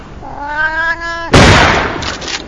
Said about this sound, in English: What we're trying out today here is clay kitten shooting. Except we ran out of clay ones, so we're just using live ones instead. Pull!